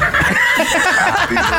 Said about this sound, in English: It does. It does a little bit. That's a parrot he's singing happy birthday to.